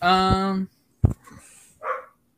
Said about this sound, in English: Oh, my dogs are going a little crazy.